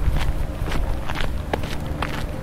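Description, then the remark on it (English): Footsteps of a person walking through gravel at a motor race in London crunch at a steady walking pace, each step a brief gritty burst over a constant low rumble, with no one speaking. “So, as you can hear, I'm hoofing it through the gravel.”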